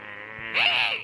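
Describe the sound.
A person imitates a pig with one nasal, squealing grunt about a second long, starting as a steady buzzy tone, then jumping louder and higher with a wavering, bending pitch before cutting off.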